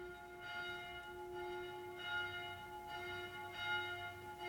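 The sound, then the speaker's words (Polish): Church bells ring for the noon Angelus, a steady sustained peal with a bright, ringing tone and regular swells in loudness, heard alone without any voices. “Południe. Przecież. No, anioł pański.”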